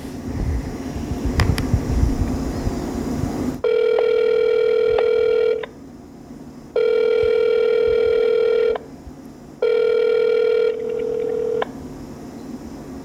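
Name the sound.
outgoing phone call ringing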